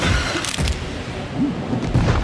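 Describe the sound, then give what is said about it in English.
A loud, crinkly crunch sound effect from a video game, like a plastic bag being squished, with dense crackling noise and a couple of sharper bursts over about two seconds. No one speaks. “That crunch sound effect sounded like a plastic bag being squished.”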